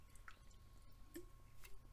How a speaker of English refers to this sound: Excuse me. I'm going to have a drink of water really quick.